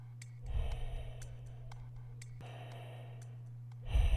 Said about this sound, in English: Somebody was breathing. Or was it his own breath, which sounded to him as if it came from a distance?